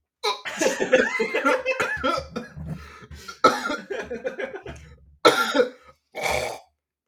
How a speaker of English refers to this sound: I'm trying to burp and cough.